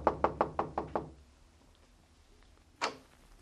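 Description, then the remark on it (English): Six quick, firm knocks on a front door, evenly spaced, then a hush broken by a couple of short, scuffing bursts near the end. “So I waited until he was out of sight, and then I stepped up to the door, braced myself, and tried my luck.”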